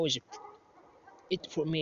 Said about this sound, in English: So yesterday was Friday night, and I'm outside, you can probably hear some dogs.